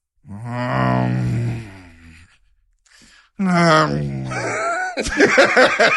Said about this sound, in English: For those of you who don't know, that's a disagreement growl right there. That's instead of saying, I don't know about that.